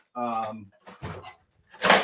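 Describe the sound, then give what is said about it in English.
Someone rummages in a drawer, with a short vocal grunt followed by a few scraping, clattering bursts, the last one loudest. “Sorry, here I have to get down in my drawer.”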